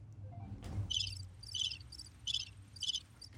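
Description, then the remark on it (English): Crickets chirp in a steady series of bright, pulsing trills, repeating roughly every half second, over a low rumbling background hum. “This is where you put the crickets in.”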